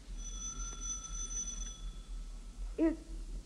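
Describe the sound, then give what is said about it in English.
A policeman rings a doorbell marked Superintendent in an apartment building: a steady, bright tone that sustains for nearly two seconds and then fades, over a low background hum. A short, sliding sound follows near the end. “He stops, reads a stenciled inscription on it, and then angrily enters an apartment building and rings a doorbell marked Superintendent.”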